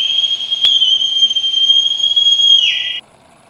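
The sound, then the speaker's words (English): A loud, piercing whistle in a newsroom holds one high steady tone for about three seconds, drops sharply in pitch at the end, then cuts off abruptly, leaving near silence. “Piercing whistle deafens three in newsroom.”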